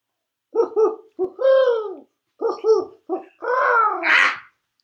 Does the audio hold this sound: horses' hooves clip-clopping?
no